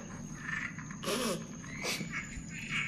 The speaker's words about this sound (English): soothe us with the dulcet tones of some real-life croaking. And this is from a frog, not a toad. Could you tell the difference? I think not.